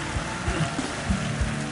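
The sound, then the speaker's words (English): A church audience applauding during a New Year service: a dense, steady wash of many hands clapping at once, sustained and fairly loud throughout, with faint voices mixed underneath. “Now, give him a clap, thunderous clap.”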